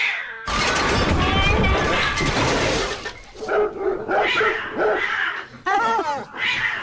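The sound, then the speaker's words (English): A dog goes after and confronts a cat, and the cat swipes at it in a loud fight, with a burst of harsh snarling, hissing and scuffling followed by a string of yowling cat cries and sharp barks. “So the dog went after the cat, confronted the cat.”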